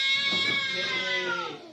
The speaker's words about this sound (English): It's an angry pussy.